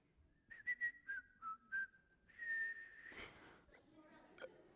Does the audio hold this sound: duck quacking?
no